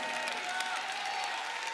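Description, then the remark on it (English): An audience claps hands and shouts to God in a dense, continuous wash of applause, with indistinct crowd voices and a sustained tone blended underneath, steady in loudness throughout. “If you receive that in Pittsburgh, you receive that in Texas, clap your hands, all ye people, give God a mighty, mighty shout.”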